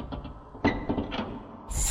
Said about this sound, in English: The doors are opening.